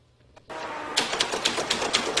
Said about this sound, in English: He's got a mechanical typewriter, like a Royal, old-fashioned typewriter. With an iPad in the carriage.